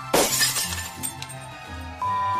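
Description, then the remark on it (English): A loud, sudden crash as the glass windows of a Taco Bell restaurant shatter, followed by a brief tinkling spill of fragments as a low tonal bed continues underneath. “threw himself into the Taco Bell restaurant, shattering the windows in the building as well.”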